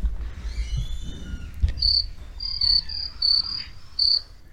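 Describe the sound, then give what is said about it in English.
Shrill cricket chirps arrive in short pulsing bursts, repeating several times after a brief quiet start, clear over a faint low background rumble. “Do you have the cricket sound?”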